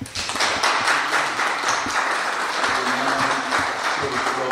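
An audience applauds a speaker after a talk on creationism and the Big Bang, many hands clapping in a dense, sustained burst that stays loud and even throughout, with faint murmuring voices mixed underneath.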